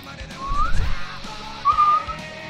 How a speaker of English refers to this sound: I hit you with a whistle.